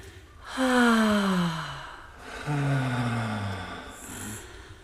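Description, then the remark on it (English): Two drawn-out, raspy vocal noises made while breathing in, each sliding downward in pitch, close and fairly loud, separated by a brief pause, with no talking. “Just breathe in, and when you get to breathing in, instead of breathing out, make a noise.”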